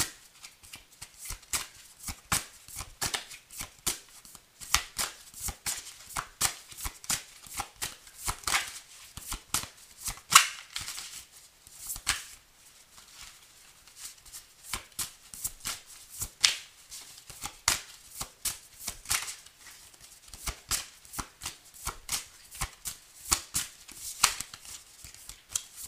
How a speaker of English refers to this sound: Let me go ahead and get some cards right quick, because usually I can tell when I shuffle what some of the energy is.